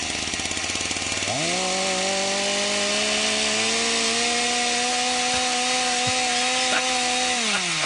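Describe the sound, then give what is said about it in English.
A chainsaw engine idles roughly, then revs up to a loud, steady high-pitched whine that holds for several seconds before dropping back down near the end. No voices are heard. “David Rush recently recaptured his record for, get this, longest duration balancing a chainsaw on his chin.”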